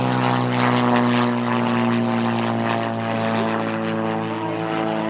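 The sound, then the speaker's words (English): A loud propeller airplane drones steadily overhead, its deep engine hum and strong harmonic buzz filling the whole stretch with little change in level. “But yeah, I feel like this is a really loud plane.”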